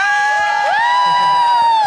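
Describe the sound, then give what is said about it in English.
A crowd cheers and claps steadily beneath a loud, sustained tone that slides upward in pitch partway through and then holds. “The clapping is drowning out the thing.”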